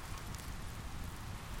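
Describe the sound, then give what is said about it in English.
Steady rain drums on a shelter roof overhead beside a campfire, a dense, continuous patter that holds an even loudness throughout, unbroken, with no voices. “As I build up the campfire, the rain begins to pelt down around me, drumming rhythmically on the roof.”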